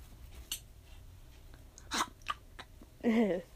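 Someone chews and crunches on paper in a few irregular, crackly bites with quiet pauses between them, ending with a short voiced hum or grunt.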